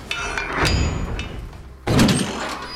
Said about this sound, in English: Right before opening, he dismisses the illuminating light on his holy cross, tries to tidy up whatever he can from the blood mist, as he would call it, that is infected on his clothes, and he opens the door in a greeting, welcoming stance.